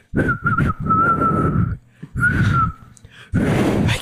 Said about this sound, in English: That was a whistle. It's not a tune.